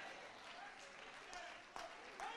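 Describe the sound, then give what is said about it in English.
An audience claps in a steady, dense wash of many hands, with a few sharper bursts standing out, and indistinct voices mixed into the crowd noise. “And while you clapping, how dare some of you take the blessings from his hand and then rob him to his face?”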